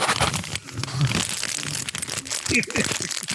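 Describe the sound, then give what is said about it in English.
Loud crinkling of cellophane about 3 feet from the microphone, a dense continuous crackle of sharp rustles running the whole time, with brief voice sounds faintly underneath. “Just going to crinkle the cellophane right by the microphone until he shuts the fuck up.”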